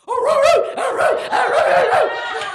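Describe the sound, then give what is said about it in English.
A woman imitates a dog barking with a rapid run of loud, voiced barks and yips, strung together without pause and edged with a laughing quality. “And then all of a sudden, he asked me to bark in the middle of sex, right?”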